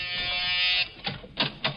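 A harsh electric front door buzzer sounds in one long, steady blast of almost a second, followed by a few short, choppy bursts, all fairly loud, with no one speaking.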